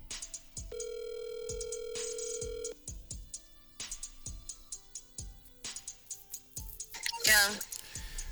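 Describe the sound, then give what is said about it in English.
A phone call placed from Chicago at about 9:40 at night rings out: a single long, steady ringback tone lasting about two seconds, with soft rhythmic clicks and thumps around it and a brief burst of noise near the end. “So let me see if I can get some answers on these phone calls.”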